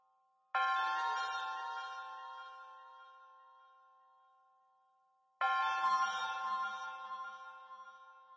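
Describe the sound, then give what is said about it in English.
Two bright, bell-like chime strikes about five seconds apart, each ringing out with shimmering overtones and slowly fading, heard clearly on their own with no talking, part of the shrine music in a video game. “You can already hear the chime.”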